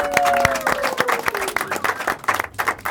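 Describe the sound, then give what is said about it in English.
An audience breaks into steady, dense applause for a musician, who plays bass and harmony in the band, many hands clapping together for a few seconds while a lingering musical tone fades out underneath. “So give … a round of applause.”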